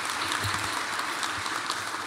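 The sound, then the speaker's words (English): Steady audience applause fills the whole moment, a dense, even wash of many hands clapping with no voices on top, holding a constant loudness throughout. “Well, let's give Paul a round of applause.”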